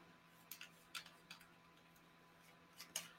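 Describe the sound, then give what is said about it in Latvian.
Small threaded parts of a vape tank being screwed together after the wick has been wetted, giving a run of faint, irregular clicks and light scrapes against quiet. “Skrūvjam tanku kopā.”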